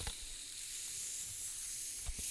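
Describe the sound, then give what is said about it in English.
A steady, airy fizzing hiss from a bottle of orange vanilla Coca-Cola being twisted open, holding at an even level for a couple of seconds, with a few faint low knocks and no voices. “Are you ready? I'm opening it now.”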